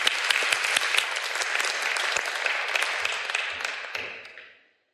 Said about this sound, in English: Give Deke a round of applause, folks.